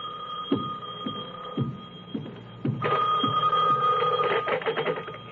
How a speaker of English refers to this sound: When I walked into my apartment in Santa Monica, the phone was ringing.